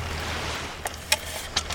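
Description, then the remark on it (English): Calm, flat ocean water laps softly against a low, steady background rumble about half an hour before dawn, with a few small splashes and drips breaking the quiet now and then. No one speaks. “A slice of silver sky at the horizon colors a flat, calm ocean.”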